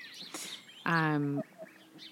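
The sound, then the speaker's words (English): A duck, one of several ducks coming up to the speaker outdoors, gives one loud, drawn-out nasal quack lasting about half a second, with faint chirping birds and soft outdoor background noise before and after. “The ducks are coming up now to me.”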